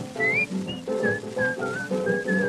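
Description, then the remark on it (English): A person whistles a bright, bouncy tune, short pitched notes rising and falling in quick succession over a fuller musical backing, clear. “tried to be just like the cheerful chickadee and whistle while you work.”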